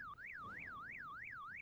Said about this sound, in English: Wake up. Your car alarm's going off. That's not mine. It's across the lake. Probably the Millers.